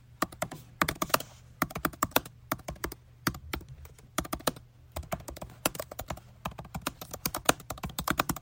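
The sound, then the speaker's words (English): Rapid, irregular keystrokes on a computer keyboard, clattering in uneven bursts with brief pauses, over a faint low hum and with no one talking, as someone types a search for where the Durfee High School name came from. “Oh, typing in some more.”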